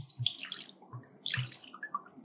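Tequila glugs out of a bottle into a glass, splashing in a few uneven bursts, fairly loud, with no one speaking; the bottle's design makes it tough to pour, so it comes out rough.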